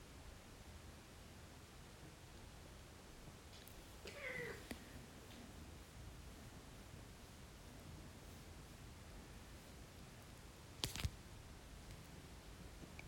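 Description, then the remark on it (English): A single soft meow from a house cat during a guided meditation rises briefly out of a steady hiss of background noise, followed later by a short sharp click or tap, with no one talking. “Maybe you heard that soft meow, that's Guusje, the cat who lives with us in the Werveling”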